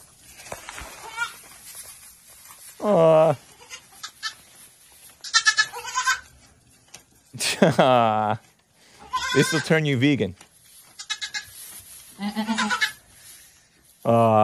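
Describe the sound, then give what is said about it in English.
A mother goat and her kids bleat back and forth in a series of loud, wavering calls, some high and thin, some deeper, with brief soft speech in between. “So listen to this 20-second clip 11 of a mama goat and baby goats.”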